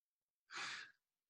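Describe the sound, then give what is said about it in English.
A single sneeze: a sudden, loud burst of breathy, hissing noise that cuts off after about half a second, with silence on either side and no talking. “Bless you”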